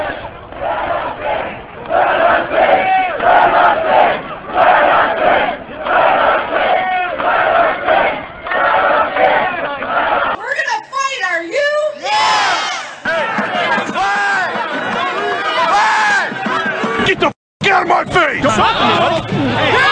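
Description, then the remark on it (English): A large protest crowd outside the Capitol chants "Let us in" in a loud, steady rhythm of repeated phrases, then breaks into a chaotic roar of overlapping shouts and yelling voices. “And so now the crowd is chanting, "Let us in, let us in."”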